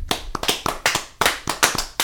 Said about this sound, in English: Everybody, big time. Everybody, let's give ourselves a hand of applause.